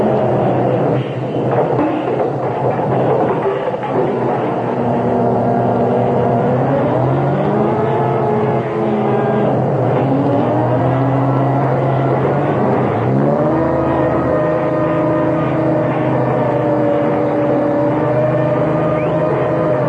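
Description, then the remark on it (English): A heavy garbage truck engine rumbles loudly and steadily, its pitch rising and falling several times as it revs and idles, with no voices. “This is a garbage truck.”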